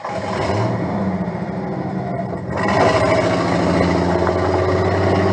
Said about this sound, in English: Oh, just turn on the engine and off you go.